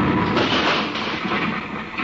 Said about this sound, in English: What happened? Who tosses a bomb at us? I just do.